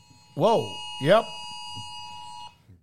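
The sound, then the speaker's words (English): A phone's emergency tornado warning alert, for a tornado warning in the area until 6:30, blares a steady, harsh electronic tone for about two seconds, with two short swooping bursts near the start and faint voices underneath. “Yeah, there's a tornado warning from some of you were asking if our phone had gone off, but there you go. It is going off now.”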